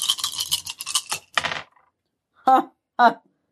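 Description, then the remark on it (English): A quick burst of hard, rattling clicks as dice are rolled across a table for extra damage, lasting about a second and a half, followed by two brief vocal sounds after a pause. “So I'm rolling my extra damage, which is 1.”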